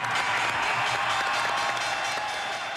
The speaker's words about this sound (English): It is tragic that this sound is news, but the return of trading on the floor of the New York Stock Exchange is big news. The cheering soon faded,